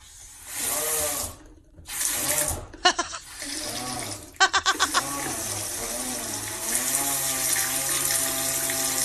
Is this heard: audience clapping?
no